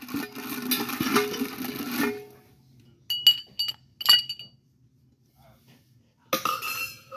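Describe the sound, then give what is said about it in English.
An ice cube is dropped into a cocktail glass while a drink of sugar, bitters and gum syrup is being made. It clinks sharply, giving a few bright ringing knocks spaced out with short pauses, preceded and followed by louder rustling, rattling handling noise. “And this is the easiest drink to make, too. You just drop the ice cube in.”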